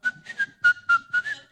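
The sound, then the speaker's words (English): Someone whistles a short, bouncy tune, about six quick notes in a steady rhythm with a breathy edge, and no talking. “And you know how some people whistle while you work?”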